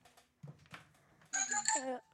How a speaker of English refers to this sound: That's his phone ringer.